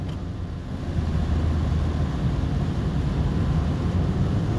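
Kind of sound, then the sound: vehicle, car driving on road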